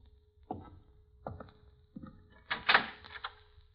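The door to the next room opens: three dull clunks of the handle or latch, then a louder rattling scrape as it swings. No one speaks.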